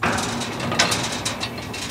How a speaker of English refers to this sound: An old windmill clatters nearby, filling a concrete cattle tank with water that has saved many a migrant trekking across this parched landscape, if they're lucky enough to find it.